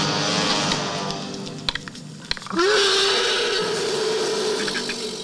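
After a couple of sharp clicks, a loud, eerie creature growl surges up and holds steady for several seconds, a reptilian, otherworldly rumble over a constant hissing background.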